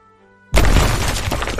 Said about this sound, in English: Wow, that explosion was awesome.